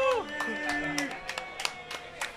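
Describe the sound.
A handful of people clap in a loose, uneven burst of sharp hand slaps, with a voice sounding briefly underneath at the start.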